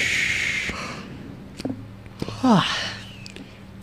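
A single yawn: a breathy intake that slides into a short, falling voiced groan, with a few faint clicks and a low steady hum in the background.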